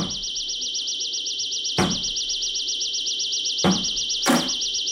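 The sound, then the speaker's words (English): Someone batters at a door: three heavy, booming crashes at uneven intervals, the last two close together, while a steady high-pitched warbling tone runs underneath the whole time. “Sounds like somebody's breaking down your door.”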